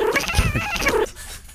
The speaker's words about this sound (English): Hey! Stop! Oh, that's one crazy cat. Hey! Oh.